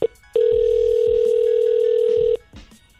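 An outgoing phone call placed on the show Ebro in the Morning rings on the line: one steady, loud electronic ring tone lasting about two seconds, preceded by a short blip, with no one talking.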